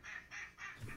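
Three nasal, raspy duck quacks in quick succession, moderately loud, followed by a lower, muffled honking bit at the end; no talking.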